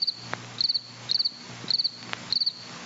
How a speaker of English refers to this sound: But listen to these crickets, like something recorded out of 1955. The crickets have static. It's like a record.